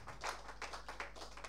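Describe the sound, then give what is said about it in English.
An audience claps together in a steady rhythm to give God the glory, each beat a bright, crisp burst roughly every third of a second, sounding fairly loud over a low constant hum, with no talking. “And clap your hands and give him the glory apláudele in the building.”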